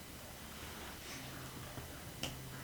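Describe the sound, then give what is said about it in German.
A single crisp finger snap rings out against a quiet, hissy background with a low hum, preceded by a fainter, softer click a moment earlier. “Schnipp mit deinem Finger und sprech mal mit deinem Mann.”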